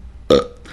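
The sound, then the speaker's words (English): A single short, loud mouth-made fart noise, a buzzy vocal burst lasting a fraction of a second, with a faint breathy trail afterward and no talking. “So that's what was that a fart noise?”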